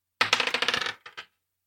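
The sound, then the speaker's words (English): A twenty-sided die (D20) clatters across a hard surface in a quick, rattling burst of hard clicks, then taps twice more as it settles and stops. No one speaks. “Give me a D20.”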